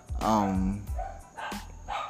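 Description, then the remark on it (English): A few sharp dog barks and a drawn-out yelp from dogs in the background come in quick, uneven bursts, moderately loud, with some faint background noise between them. “You must get the dogs in the background.”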